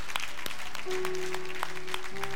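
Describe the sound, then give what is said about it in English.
A crowd claps steadily to celebrate the new life of someone who accepted Jesus, in a dense, continuous patter with a few sharper claps standing out, while low sustained keyboard notes hold underneath partway through. “If you're in person, if you would just raise up your hand, we're going to clap and celebrate your new life.”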